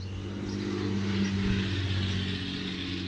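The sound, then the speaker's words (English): A small S10 pickup truck's loud engine roars with a deep, steady droning rumble, swelling slightly midway as it passes, out in the deep countryside, with no talking over it. “That was an S10, a very small truck that was that loud.”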